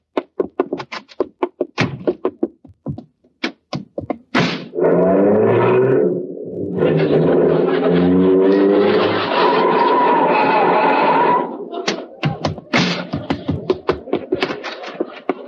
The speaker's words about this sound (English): Thought I'd never get here. Hey, how come you drove your car over here? You only live next door.